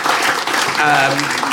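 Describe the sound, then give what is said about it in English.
An audience bursts into loud, sustained applause, a dense steady patter of many hands clapping, with a voice briefly audible through the noise partway through. “Yes, give them a round of applause.”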